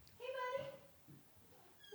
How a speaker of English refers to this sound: Hey, buddy. I just saw this kitty. I know, the kitty's so cute.